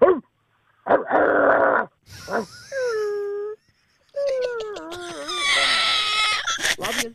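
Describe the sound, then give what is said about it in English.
A person imitates a dog, mixing rough, breathy growl-like bursts with high, wavering whines and whimpers over about seven seconds, with short pauses between the sounds. “we're going to do a dog”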